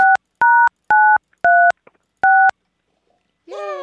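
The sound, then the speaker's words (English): Five loud, clean telephone keypad beeps, DTMF tones dialing sixes, pressed at a steady pace with short silent gaps between them, followed at the very end by a voice starting up. “I'm dialing a bunch of sixes.”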